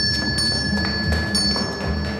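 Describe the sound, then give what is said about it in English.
A bell in a workroom rings continuously for a couple of seconds, a steady bright metallic tone with faint rattling strikes running through it, fairly loud, with no voices. “If you're here, sir, who's ringing the bell?”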